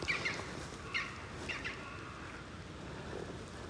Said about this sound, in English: Woodpecker over in the top of the trees. Top of the bank.